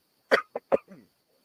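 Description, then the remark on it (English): Three sharp coughs in quick succession, the first loudest, trailing off into a brief voiced throaty sound before silence. “The cough did it.”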